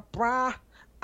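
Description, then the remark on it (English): A voice imitates a trumpet with one short, loud, nasal blast of about half a second. It is followed by a faint breathy trace and the start of another word. “I guess I was trying to give you trumpet.”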